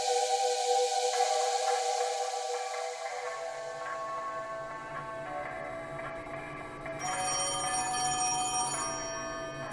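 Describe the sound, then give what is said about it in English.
A telephone rings steadily and loudly, its bright tones sustained without pause, with a faint ticking underneath and no voices. “Damn phone is ringing.”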